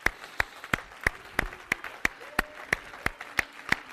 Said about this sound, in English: When God comes into the house, he deserves a response out of us. He's got to get a response out of us. Oh, yes, he does. Clap your hands and shout to the Lord.